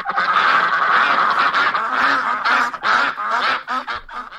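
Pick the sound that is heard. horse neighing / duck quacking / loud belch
duck quacking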